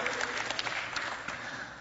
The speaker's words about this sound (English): Are you with me? Is this cool? Clap for the Trinity.